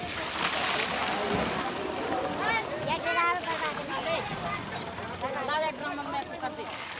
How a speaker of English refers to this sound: The truck squeezes down the narrow lane and parks by a carefully arranged collection of about 150 containers. Neighborhood men use four large hoses to fill as many containers as possible, as quickly as possible.